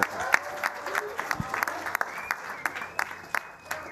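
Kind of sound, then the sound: crowd, audience applause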